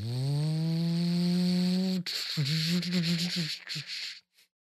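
A voice imitates a lawnmower: a steady, buzzing engine drone for about two seconds, then a sputtering, wobbling rumble that breaks up and cuts out.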